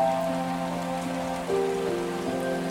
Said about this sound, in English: you can see a high waterfall which lands in a deep pool in a lovely sunlit forest glade.